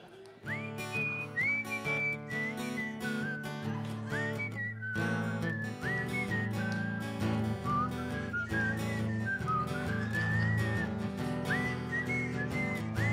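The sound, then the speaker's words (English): A person whistles a verse of a bright, cheerful Christmas song over a steady instrumental backing track, the tune carried clearly and continuously for several phrases with no talking. “Do you want to do a whistle verse?”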